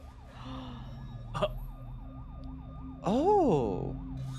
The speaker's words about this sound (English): However, the bullet goes right past the both of you through the front door to your apartment, and then you hear an alarm going off in your aunt's house.